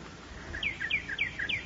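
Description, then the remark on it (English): A small bird chirps in a quick run of about six bright, high, downward-sliding notes, alternating slightly in pitch, heard on its own over a faint low background hum. “Gee, she frightened the bird away.”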